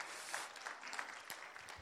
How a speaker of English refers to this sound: Why don't you give yourself a hand clap tonight in the house of God?